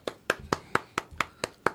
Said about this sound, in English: Hand claps to him. We all got to clap our hands.